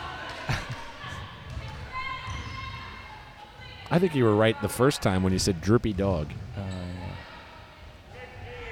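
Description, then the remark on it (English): A basketball bouncing on a court during a game involving the Badunga Dunks, a few sharp, hollow thumps at an uneven pace, mostly under steady conversation between people talking. “The Dunks put up a shot. It's no good. Hanma Boogie, nice rebound.”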